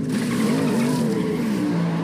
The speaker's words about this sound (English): Is that a dolphin sound? Yes. That was a dolphin sound. That was a dolphin.